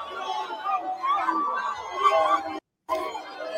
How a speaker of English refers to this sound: No, I was gonna play that video of Trump. I'm everyone cheering him at in Iowa yesterday. So yeah, let me pull it up right here.